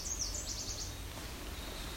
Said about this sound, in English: There was an oven bird in the distance. That's sounding like there's the oven bird.